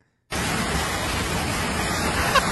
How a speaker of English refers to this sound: So it was like this ski lift, and right below it, like a water main broke or whatever, and the water spewing up like Old Faithful,